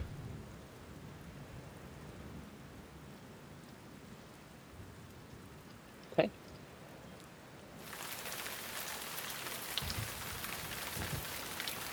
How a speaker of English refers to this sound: It is raining hard here. Harder than it was where you were before.